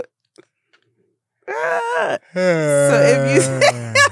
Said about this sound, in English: Just thinking about yawning make me yawn. I'm about to yawn.